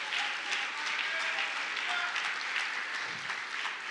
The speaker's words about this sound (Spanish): Si lo crees, dale un aplauso fuerte, Señor.